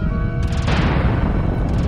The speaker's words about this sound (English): An exceptionally violent explosion shook the passage, drowning him out. A lung-searing miasma of carbonized component filled the air, obscuring everything.